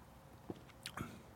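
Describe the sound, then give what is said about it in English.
A quiet sip of Hopnosis IPA beer from a can: a soft wet mouth click, then a brief slurping draw and a swallow-like squish, with no talking. “So I'm going to have a little slurp of this one, and we'll see how it goes.”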